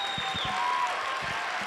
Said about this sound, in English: A round of applause for all of them, please. For all of them.